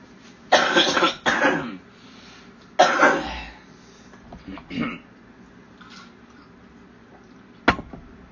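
A few harsh coughs in quick bursts, followed by softer throat-clearing noises and a sharp click near the end, with no talking.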